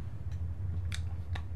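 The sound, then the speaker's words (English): A drink bag being handled gives three short, crinkly plastic rustles spaced unevenly over a steady low hum, the middle burst the sharpest. “But you hear the bag.”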